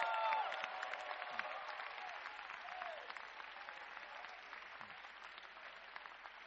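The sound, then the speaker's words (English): A crowd claps for Jesus, the dense clapping starting loud and gradually easing off, with a few scattered voices and a faint whoop mixed into the sustained patter of hands. “Clap for Jesus.”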